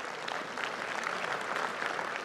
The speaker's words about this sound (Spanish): Necesitamos a Dios, necesitamos a Dios. Es tan importante, un aplauso al Señor.